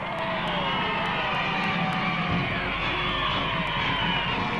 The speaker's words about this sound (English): Down Fifth Avenue, through immense cheering crowds.